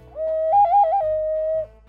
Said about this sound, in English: That's that one whistle I got from a wizard in Michoacan. Who's it's a skull, right? But it looks like a tiger and a human skull mixed together.